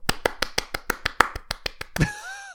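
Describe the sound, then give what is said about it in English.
A quick, steady run of about thirteen sharp hand claps, evenly spaced and fairly loud, followed by a brief whining, tonal sound at the end. “I actually clapped my hands at the same time, that was quite odd.”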